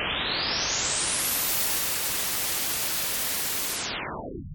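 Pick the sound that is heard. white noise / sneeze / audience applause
white noise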